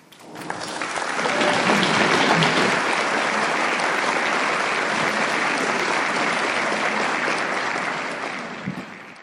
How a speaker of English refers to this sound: Let's have a round of applause again for our speaker, please.